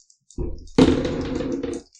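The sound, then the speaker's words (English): Two dice clatter and tumble across a hard surface for about a second after a short low rattle, a busy burst of clicks that fades out as they settle; they are rolled to see whether damage is taken from a fall. “If you don't, you just roll 2d2, two dice.”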